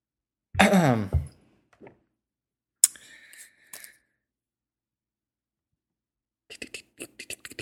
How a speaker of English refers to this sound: Typing. It is typing on a keyboard.